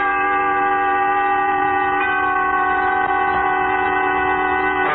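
A train in a radio drama recreating the wreck of the Old 97 sounds loud, a steady, sustained horn-like tone with layered harmonics holding for several seconds over a low rumble, with no voices.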